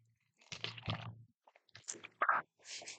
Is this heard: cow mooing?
no